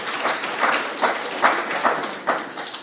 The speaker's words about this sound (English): Excellent. You've done the jigsaw. Well done. Can we have a round of applause for the table at the front there doing the jigsaw?